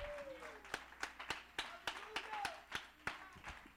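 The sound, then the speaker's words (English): An audience claps hands in a steady, rhythmic beat to give the Lord praise, roughly three sharp claps per second, with voices calling out and sliding in pitch underneath the clapping. “Somebody clap your hands and give the Lord some praise.”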